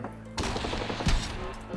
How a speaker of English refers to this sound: It's a bit early in the fucking morning for some people to be shooting. Jesus Christ.